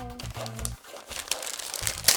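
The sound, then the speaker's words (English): Wrapping paper crinkles and rustles as a present left by Santa is unwrapped, revealing buzzers for a quiz, in uneven bursts of crackling with a sharper, louder tear-like crunch near the end, over a low murmuring hum at the start. “You can now open the present that Santa has left for you both.”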